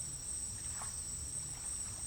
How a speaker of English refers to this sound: When all of her tears had run their course, she began hearing the most beautiful sounds around her. The chirping of crickets, hooting of owls, bellows of toads, all making music with each other.